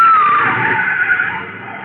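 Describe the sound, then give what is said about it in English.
The tires of a big baby blue convertible screech loudly in a sustained skid lasting about two seconds as the car swerves at pedestrians, with a harsh squeal that slowly fades slightly toward the end. No voices are heard. “And that car was trying to run us down.”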